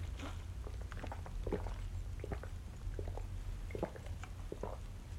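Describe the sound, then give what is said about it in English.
Someone drinks water from a bottle during a break, with a series of soft wet sips and swallowing clicks spread irregularly over a few seconds against a steady low background hum. No one speaks. “But just to show that we're paying attention, we will indeed take a water break.”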